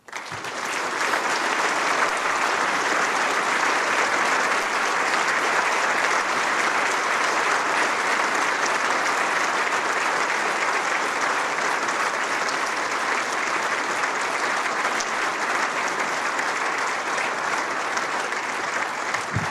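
Sustained applause from a large audience at a conference for speaker Joe Stopulos after his talk fills the whole stretch, steady and loud, a dense wash of clapping hands with no pauses and no voices rising above it.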